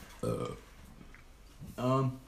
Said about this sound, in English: Not on the podcast. I always burp on the podcast. He's done it twice last one. Yeah, excuse you.